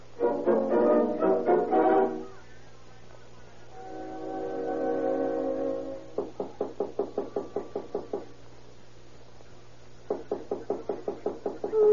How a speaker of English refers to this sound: There's somebody knock on the door. Get up and see who it is. Somebody knock on the door? What time is it? It's 3:30. 3:30? Who is it this time of the night?